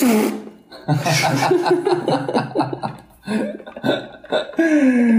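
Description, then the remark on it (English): A voice makes a loud, buzzy raspberry-style imitation of another person's farts, blurting several sputtering bursts mixed with chuckling and laughter, fairly loud. “imitate my farts.”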